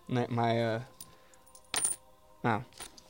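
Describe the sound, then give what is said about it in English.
Quarters clatter onto a hard tabletop, a few separate metallic drops landing in short bright bursts with brief pauses between them. “If you have coins on the table, for realistic coin sounds, keep quarters with you all the time.”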